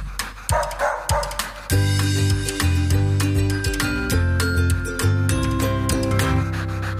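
A dog barks in a quick burst of several sharp yips and woofs before a loud music bed with sustained tones takes over and carries on.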